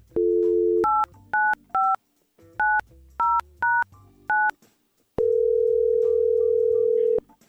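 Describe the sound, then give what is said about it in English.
A steady dial tone, then a quick series of touch-tone beeps as a number is punched in, followed by a long ringback tone; no one talks over it. Hosts of the Y100 radio station in San Antonio are phoning a listener on air. “But we're going to try to get Nina on the phone and maybe figure things out.”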